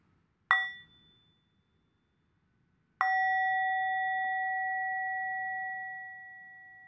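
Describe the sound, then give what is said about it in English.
A bell is struck twice: a short first ding that fades quickly, then after a pause a second, fuller strike that rings on with a long sustained tone. “And otherwise, I would suggest we have a sound of the bell.”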